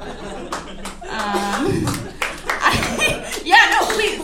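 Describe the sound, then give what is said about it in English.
Scattered audience clapping rises in uneven bursts over a few seconds, mixed with chuckles and voices, growing a little louder toward the end. “Please applaud. Yes. Applaud my indecision.”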